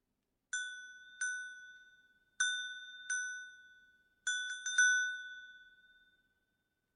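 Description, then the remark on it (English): Cowbells clanking: bright metallic strikes come in pairs, then a quick flurry of four, each ringing out in a long, fading tone with nobody talking. “Sounds like cowbells.”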